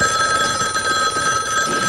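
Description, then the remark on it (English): A telephone bell rings loudly in a continuous bright trill, sustained for the whole moment with no voices over it. “Your phone's ringing.”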